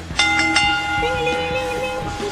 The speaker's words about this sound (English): Ring the bell!